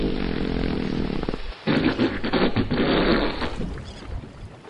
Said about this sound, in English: Oh, look. A whole pod of whales approaching our boat. Oh, they're coming quite close. How beautiful they are. Do humpback whales communicate by farting? Yes, one will fart and another will fart back. Listen.